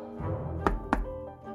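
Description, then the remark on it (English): Two sharp, solid knocks on the door of apartment 412, spaced about a quarter second apart, standing out over a steady low musical hum. “We headed up to the apartment, 412, and I knocked.”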